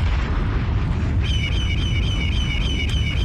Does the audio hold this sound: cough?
no